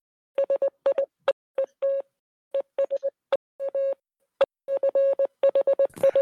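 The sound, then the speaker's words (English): A steady electronic tone keyed on and off in quick dots and longer dashes, like Morse code, with a few sharp clicks between groups and no voices. “Does anyone here speak Morse code?”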